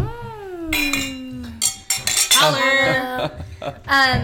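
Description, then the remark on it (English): Several bright glass clinks ring out in quick succession in a toast, their tones lingering briefly between taps. A short, falling, meow-like cry comes just before them. “Another cheers. Otro brindis.”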